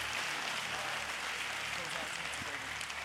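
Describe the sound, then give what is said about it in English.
A large audience gives Jesus a round of applause during a sermon, in dense, continuous clapping that holds steady for the full few seconds, with scattered voices mixed in and a faint low hum underneath. “Can you give Jesus a big round of applause?”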